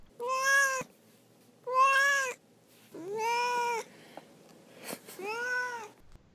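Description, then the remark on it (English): A cat named Duarte meows four times in a row, each call drawn-out and wavering, with short pauses between them; fairly loud against a quiet background, no talking. “We'll move on now to Duarte's Corner, where my cat Duarte will give his 2 cents about the book.”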